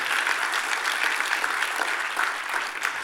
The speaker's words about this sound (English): Come on, if you're going to clap, do it well. To the glory of Jesus.